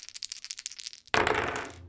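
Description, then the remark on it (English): A quick series of light clicking rattles, like dice tumbling in a hand, ends in a sharp clatter as they hit and skitter across a hard surface, then settle. Fairly loud, no voices. “Go ahead and roll for it. You can use your nimble fingers.”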